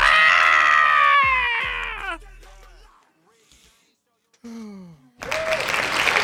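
Loud whooping cheers slide downward at the start, fall quiet, then a dense burst of hand clapping rushes in at the end, steady and noisy.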